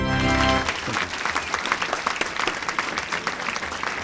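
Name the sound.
audience round of applause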